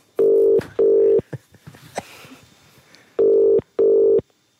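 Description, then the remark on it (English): A telephone call being placed to wish someone a happy birthday rings out: two loud double-ring bursts of tone separated by a stretch of faint clicks and line noise, with no talking. “let's get her on the phone, please”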